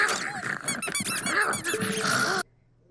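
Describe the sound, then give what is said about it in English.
Two dogs, Big Tony and Little Sal, growl while a squeaky toy squeals over and over in rapid, irregular bursts, a loud, busy tussle lasting a couple of seconds before cutting off into near silence. “Not your squeaky toy!”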